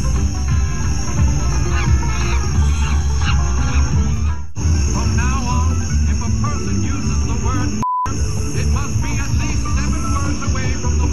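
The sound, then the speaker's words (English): A neighbor harassing a Black family in Virginia Beach loudly imitates monkey calls in repeated shrill hoots and screeches, layered over a dense, steady background din with a brief dropout partway through. “They describe an escalating campaign of racial slurs, loud music, and monkey noises.”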